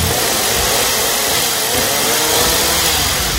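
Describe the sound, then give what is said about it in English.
A chainsaw roars continuously, a loud, steady engine drone with a harsh buzzing edge that holds for a few seconds without letting up. No voices are heard. “Wait till you see my unicycle chainsaw juggling routine.”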